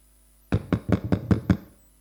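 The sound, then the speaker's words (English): Six firm knocks on a door in a quick, even rhythm, fairly loud, with no voices and quiet before and after. “He came knocking at your door.”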